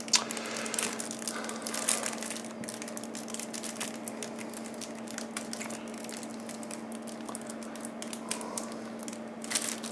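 A card pack wrapper is worked and torn open, giving nonstop crinkling and crackling with sharp scratchy bursts, over a steady low hum and with no one speaking.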